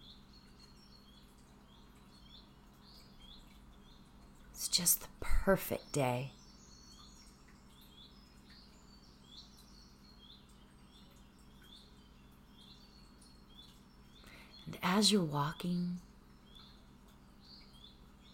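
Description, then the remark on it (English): Birds chirp and sing steadily in the background throughout, soft and continuous, with a calm voice speaking briefly over them twice. “I want you to imagine that you are walking down a path to a beautiful meadow with birds singing.”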